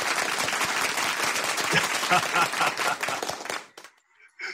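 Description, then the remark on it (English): An audience applauds loudly with dense, rapid clapping for several seconds to welcome Clinton Sparks on the show Power Moves Makers, then it abruptly cuts off, leaving a brief quiet gap before a faint voice begins. “Clinton, where's the applause?”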